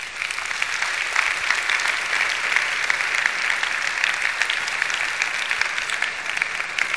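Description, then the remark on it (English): An audience applauds to celebrate fathers, steadily for several seconds, a dense, even wash of many hands clapping at once, fairly loud and sustained without pause or speech. “Again, let's clap for all our fathers.”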